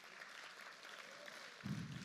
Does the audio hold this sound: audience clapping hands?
yes